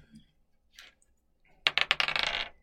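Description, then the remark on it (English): Dice tumble and rattle across a hard tabletop during a tabletop role-playing game: a few faint clicks first, then a loud burst of sharp clacks settling into a quick skittering rattle before stopping. No voices. “And fucking nails it with a 19 coming in with the D8 damage dice.”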